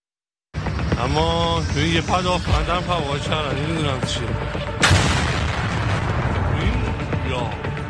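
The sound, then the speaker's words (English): News footage of an Israeli drone strike against an Iranian defense facility: one sudden, loud booming blast midway through, followed by a rumbling roar, while excited voices talk and call out throughout. “What you just saw was footage of an Israeli drone strike against an Iranian defense facility.”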